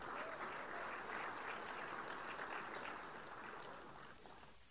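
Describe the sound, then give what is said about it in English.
An audience claps for the Lord, a steady, dense, even wash of many hands applauding that holds strong for several seconds before gradually thinning out toward the end. “Give the Lord a clap off.”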